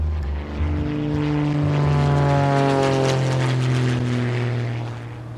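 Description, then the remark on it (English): A propeller plane's engine revs up loudly and steadily in a field, a droning buzz that builds and holds as the aircraft powers up for takeoff, then eases slightly at the end. No voices. “We went out into the field and climbed into the plane. Then Ayers gunned the motor, and we were taking off.”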